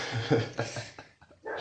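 A dog whimpers in short, high, whiny bursts, a few uneven cries with brief pauses between them over a faint noisy background.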